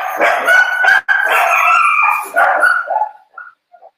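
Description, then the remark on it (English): A dog barks and howls loudly, a long wavering howl broken by a sharp bark, then fading into a few short, quieter yips. “I just felt a lightning bolt go through my head that I wanna choke one of my dogs to death with my bare hands.”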